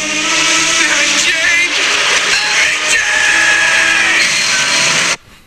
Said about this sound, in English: Spider-Man. Spider-Man No Way Home. Spider-Man. Spider-Man's blood-curdling scream. Look it up, kids.